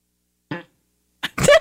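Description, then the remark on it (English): A short wet fart sound effect plays from an Alexa smart speaker: a brief sputter, a pause, then a louder, longer squelchy burst. No one talks. “Asking you for a lovely fart. Or say random. Random. That was a wet one.”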